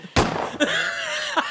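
A gunshot sound effect: one sharp, loud bang right at the start, followed by a ringing, warbling tail with a couple of softer pops, and no talking.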